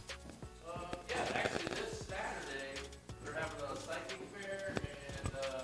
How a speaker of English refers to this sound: You guys hear those footsteps?